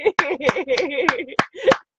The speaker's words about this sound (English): I am clapping for your greatness. I'm clapping for our evolution. I'm clapping for us coming out of that chrysalis state as the beautiful butterflies that we are.